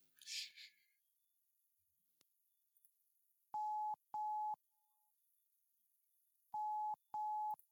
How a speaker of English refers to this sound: I'm calling someone. Let's see if this person can help us out. Who are you calling?